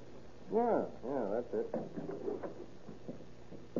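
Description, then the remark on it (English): An old door is unlocked with a skeleton key and pushed open, its hinges letting out a couple of drawn-out, wavering creaks, followed by softer knocks and rattles. “Let's see if we can get this door open.”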